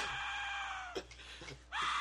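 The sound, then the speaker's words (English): A man plays a death whistle: a piercing, scream-like shriek with dense, harsh high tones, holding steady for about a second, breaking off briefly, then returning at full loudness. “So this is the dead whistle.”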